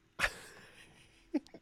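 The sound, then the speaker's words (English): A person voices a single short, loud dog bark, a gruff woof that fades quickly, followed a moment later by a brief softer vocal sound. “And the dog goes, woof.”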